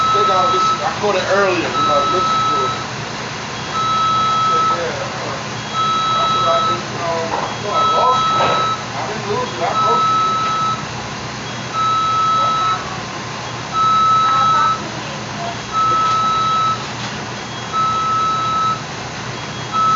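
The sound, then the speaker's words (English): Steady electronic beeping at a McDonald's repeats at an even pace, a short tone roughly every second, running throughout over a busy background of clatter and indistinct voices. “Beeping. That's McDonald's, y'all.”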